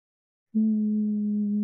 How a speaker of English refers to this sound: And now I want you to introduce a humming in your natural voice.